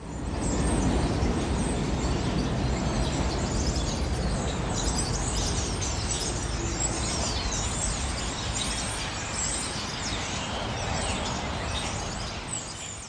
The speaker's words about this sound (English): I passed a whole bunch of pigeons nesting underneath the subway rails, some of the above ground outdoor subway rails, and you could hear them chirping and stuff quite loudly.